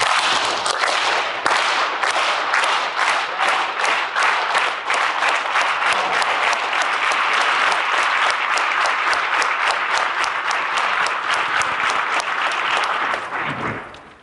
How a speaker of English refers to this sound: Just get your hands as wide as you can. Just clap for him